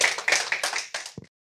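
An audience claps in welcome, a dense burst of overlapping handclaps that carries on steadily for about a second before ending in a few scattered final claps.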